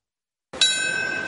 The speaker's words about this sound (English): Today, the chime of a bell echoed in Lower Manhattan at 8:46, beginning the somber remembrances of 9/11.